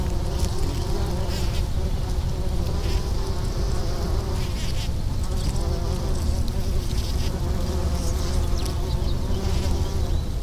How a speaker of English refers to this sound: Because of all the flowers in the meadow, my spot is also swarmed by several types of insects like bees and wasps.